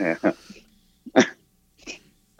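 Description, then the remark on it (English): A dog, the speaker's mother's dog Enrique, gives a few short, sharp barks spaced irregularly apart, moderately loud, with quiet gaps between each bark. “It's all not, while a dog's barking in the background.”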